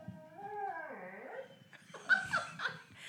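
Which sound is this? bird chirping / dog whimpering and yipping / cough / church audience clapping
dog whimpering and yipping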